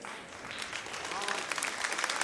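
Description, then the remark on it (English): Women in a church audience applaud, dense steady clapping that builds slightly and holds at moderate loudness, with faint voices mixed under the applause. “Yeah, that's all the women clapping.”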